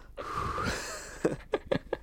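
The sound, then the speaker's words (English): A voice imitates heavy mouth panting, like someone out of breath breathing out their mouth at the top of the stairs: one long rasping exhale, then a run of short, quick, breathy huffs, with no words spoken. “If you get to the top of the stairs and you're just breathing out your mouth.”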